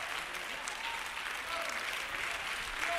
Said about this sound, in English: Oh, clap your hands if you hear what I'm preaching.